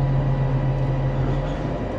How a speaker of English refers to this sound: So I'm in the bus right now.